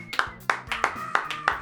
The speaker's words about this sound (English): big round of applause